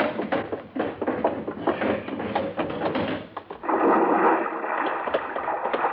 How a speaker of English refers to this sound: Fell off the back of the car, huh? Yes. The big box. I must have bumped it when I reached into the trunk for my weekend case. Bounced right down into the lake, huh?